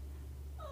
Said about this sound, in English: That's the cat meowing in the story. So the cat meowed at her.